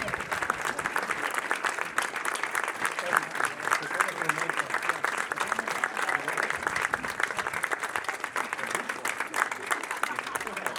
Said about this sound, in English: And ladies and gentlemen, given the performance of a lifetime, yes, give it up for Jonathan Frakes. This definitely needs to keep going with the applause here. Jonathan Frakes, ladies and gentlemen.